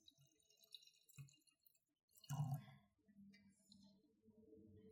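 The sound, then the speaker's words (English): Wine from the Côte d'Aronne is poured into a glass, with a soft clink followed by a steady, gurgling trickle of liquid that fills the last few seconds. “Let me pour my glass, and then we'll get started smelling and sipping.”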